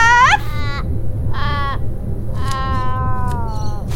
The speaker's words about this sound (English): Now, not many people understand how tricky it is to train a raven.